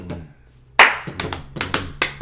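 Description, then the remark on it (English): A hip-hop beat banged out by hand on a table: a loud opening thump followed by a run of sharp, syncopated knocks and slaps, with no voices. “Who didn't bang that on the tables in a lunchroom?”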